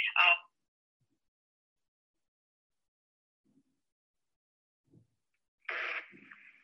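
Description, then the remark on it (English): A brief chopped fragment of voice on a phone call, then several seconds of dead air with a couple of faint ticks, before another clipped burst of sound as the phone connection cuts in and out. “It just cuts off.”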